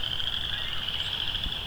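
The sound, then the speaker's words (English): A dense chorus of frogs, probably western chorus frogs, calls steadily from across a marsh of about a square kilometer, their overlapping high trills forming a continuous, moderately loud wall of sound with no voices present. “A lot of chorus frogs. Probably western chorus frogs.”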